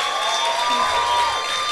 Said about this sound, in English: Round of applause for Carmen Yulín Cruz, please.